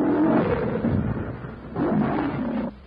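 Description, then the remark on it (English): Numa, a big cat, roars furiously as Tarzan grips it from behind and stabs it with a knife, two long, loud bursts, deep and rumbling, with a brief lull between them and no voices. “Raised from behind, Numa roars furiously. His mighty taloned paws beat and slice the air as Tarzan's keen knife buries itself again and again in the unprotected left side.”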